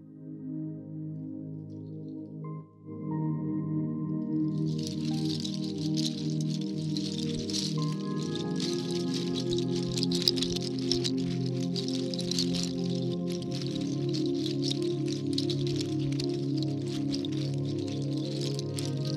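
Rattles made of dried, curled goat toenails attached to a cloth band, shaken steadily, making a dense, continuous shimmering hiss like rushing water. It starts a few seconds in and is fairly loud over low, sustained humming tones.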